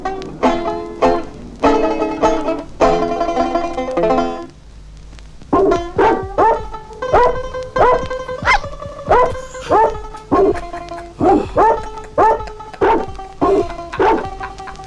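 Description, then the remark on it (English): Dog barks pitched to different notes and strung together in a steady rhythm to form the melody of a classic hit song recorded using only barking dogs, loud, with no talking. “They could record all kinds of classic hits using only the sound of barking dogs.”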